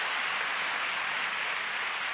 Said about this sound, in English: Come on, you want to clap? Give the Lord a big clap tonight.